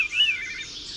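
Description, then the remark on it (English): A veery thrush, a small bird with a little brown body and a notable white belly, sings a breathy, fluting phrase that swirls and spirals slightly downward, heard clearly with no voices over it. “Small bird, and you'll see a short video behind me of what is known as the veery thrush bird.”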